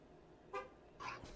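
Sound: car horn honking outside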